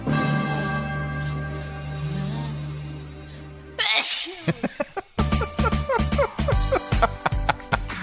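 A long, steady sung note breaks off into a single loud sneeze, and then bright, bouncy music with chiming bells and a steady beat starts up.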